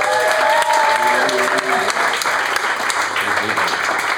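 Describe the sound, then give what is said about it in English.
An audience gives a loud, steady round of applause for both competing teams, dense clapping holding for about four seconds, with a brief cheer rising above it early on. “But a big round of applause for both teams.”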